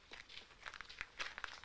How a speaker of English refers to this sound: Crunchy gravel.